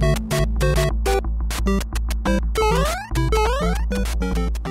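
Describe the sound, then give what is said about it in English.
Loud, busy electronic video game sounds from gaming at a family home: rapid bleeps and tonal blips over a steady low drone, with rising sweeping zaps repeating in quick bursts. No talking. “This sound was very familiar in the Lane home.”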